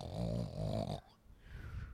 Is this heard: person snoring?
yes